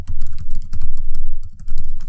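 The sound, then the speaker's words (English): Rapid typing of a password on a computer keyboard: a dense, uneven run of crisp key clicks for about two seconds, with one brief pause near the end and no voices. “And of course, my screen would go dead on me, and I don't know my password, so hold up.”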